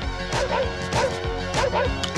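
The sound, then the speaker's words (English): In a trailer for the film National Lampoon's Vacation, a dog crashes into a picnic basket, setting off a string of loud clattering, thudding impacts that repeat every half second or so over a dense, busy background. “The dog went on the picnic basket.”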